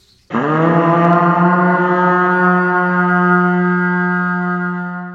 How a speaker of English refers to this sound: He felt like his body was made of stone, and before Ezekiel could call on the radio again, a horn blasted.